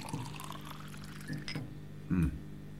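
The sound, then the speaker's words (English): Water is poured into a glass in an office, a steady splashing trickle lasting a couple of seconds, followed by a soft low knock as something is set down. “A glass of water? Oh, yes, please.”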